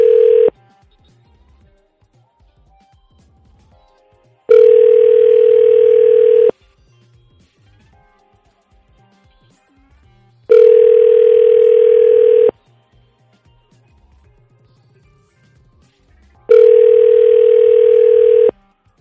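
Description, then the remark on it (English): Steady electronic ringback tone from an outgoing phone call to a senator's office, made from a local number, sounding in four evenly spaced two-second bursts with silent gaps between, clear and fairly loud with no talking. “So if they see it on the caller ID, they know I'm his constituent.”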